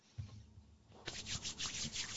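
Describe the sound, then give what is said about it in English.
Hands rubbing together in liquid hand sanitizer from a little pump bottle in a studio, a soft low thump followed by repeated swishy, hissing rubbing strokes in a steady rhythm, with no talking. “I got a little pump bottle of liquid hand sanitizer.”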